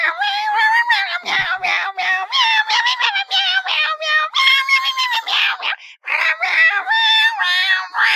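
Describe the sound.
A person makes a long, continuous stream of loud cat meowing noises, the pitch wavering and bending through repeated meows for about eight seconds, with hardly a pause.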